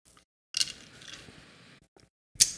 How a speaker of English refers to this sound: Good ice crunch. Boy, I like good old glass of ice.